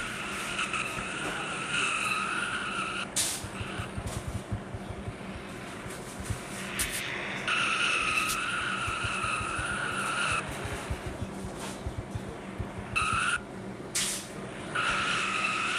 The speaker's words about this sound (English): And I think there's a double burnout. The 11's going too.